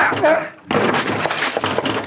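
A locked house door being broken down: a heavy thud, a brief lull, then a loud run of splintering crashes and repeated banging impacts that keep going to the end.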